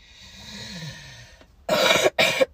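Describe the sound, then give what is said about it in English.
Two harsh, forceful coughs in quick succession, loud and raspy, following a soft stretch of breathy background noise. “Pardon me, that was gross.”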